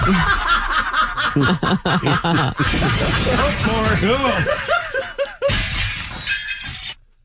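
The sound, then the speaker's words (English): A car's windshield and back window shatter and crunch repeatedly in sharp bursts, with people snickering and laughing loudly over the breaking throughout, the crashing and laughter overlapping until it cuts off abruptly. “Oh, that is your windshield. There's the back window. Stop it! There's no glass left in the...”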